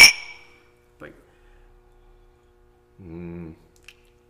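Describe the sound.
A single bright clink of glasses raised in a toast with rye whiskey rings out at the start and fades quickly, followed by a short vocal sound and a brief voiced murmur a few seconds later.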